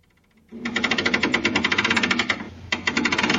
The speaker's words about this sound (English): A big gust of wind blows past us and into the room. Oh. It hits the phonograph crank.